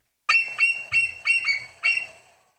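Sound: bald eagle call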